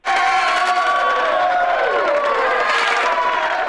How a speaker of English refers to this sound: They got to pour salt in the wound and do a whole cheer session. Jeez.